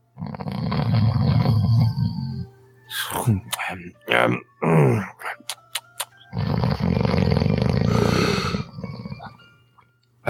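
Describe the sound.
A voice imitates snoring: two long, loud, rasping snores with sputtering, snorting noises in between, each drawn-out rumble lasting a few seconds.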